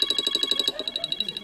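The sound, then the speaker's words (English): A red telephone rings with a call from Dwayne Johnson, a rapid, buzzing electronic trill, fairly loud, the pulses continuing steadily while a low voice seems to murmur underneath in the second half. “the red phone's ringing, sorry.”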